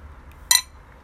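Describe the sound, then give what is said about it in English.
A single sharp, bright clink of dishware rings out briefly, like a utensil tapping a plate during a meal, over a quiet low rumble with no talking. “I'm sorry, guys. I'm fucking eating.”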